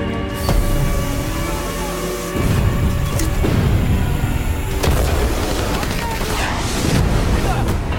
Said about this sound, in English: Shots fired!